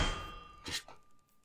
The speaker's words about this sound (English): Because as you're sitting there, all of a sudden, a giant mallet comes down and knocks your ass out.